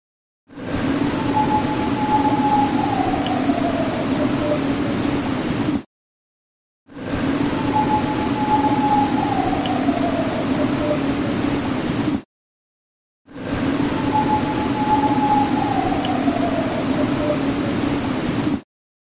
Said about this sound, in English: This howl was even longer than the first one. And I'll just play the isolated howl 3 times so people can listen.